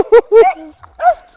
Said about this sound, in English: Whoa, what the heck? What was that? What do we got? Is that a coyote?